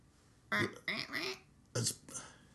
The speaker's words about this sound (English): I've got that duck call. You think that would do anything? Ah! We could try it. Yes, get the duck call.